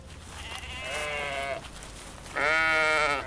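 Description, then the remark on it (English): Sheep bleat twice, loud, each call a wavering, quavering baa lasting about a second, with the second bleat louder than the first and a short pause between them. “We have to find the sheep.”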